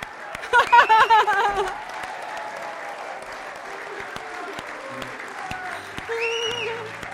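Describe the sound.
An audience applauds steadily for several seconds, a dense wash of many hands clapping that swells loudest at the start, with a few cheering voices and a brief high whoop near the end.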